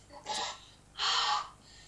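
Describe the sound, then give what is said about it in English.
Two deep, breathy inhalations, the second longer and stronger, with a short pause between them and no talking, as a person who had asthma is asked to breathe in deeply. “Okay, but now we want you to breathe in, breathe deeply to confirm that God has healed you from that asthma.”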